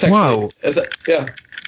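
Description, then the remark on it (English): A small souvenir Liberty Bell replica rings with a thin, high, steady tone that lingers throughout, while a person talks over it. “Oh, I have a little Liberty Bell right next to me.”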